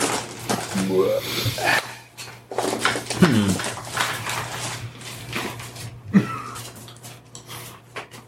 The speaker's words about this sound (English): The fucking dog just scared the shit out of me.